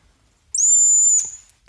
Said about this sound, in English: I have something more which is pretty tiny. It's only 5 millimeters in size. It's a printed whistle. You want to hear it?